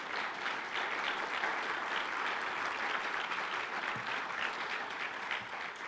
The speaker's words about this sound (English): So can we give them a round of applause, our staff?